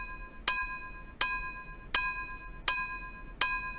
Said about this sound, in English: I'm just going to start ringing the bell indiscriminately.